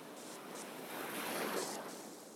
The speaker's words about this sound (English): So I stop to breathe in the feeling of a sea breeze.